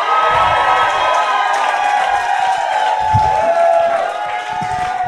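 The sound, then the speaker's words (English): A large crowd cheers and shouts loudly and continuously, a dense wall of overlapping voices and whoops with scattered claps, sustained at high volume for several seconds. “If we're going to cheer, let's cheer.”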